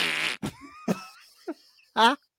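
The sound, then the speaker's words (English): A string of fart sounds, as blared from screens outside a cinema: a long, buzzy blast followed by several shorter squeaky bursts with brief pauses between them, ending in one more loud raspy toot. “And they ended up on the screens outside the cinema, blaring farts.”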